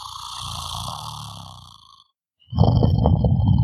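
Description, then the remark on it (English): A deep, rumbling breath from a large creature's nostrils, from behind a mossy rock hiding an entrance, fades out, then after a brief pause a louder, gravelly growl rises and holds. No talking. “A rumble of a breath, a growl from around the corner.”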